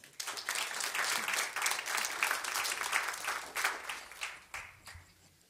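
A crowd applauds warmly for a man coming forward, a dense wash of many hands clapping that holds steady for several seconds before gradually thinning out. No one speaks over it.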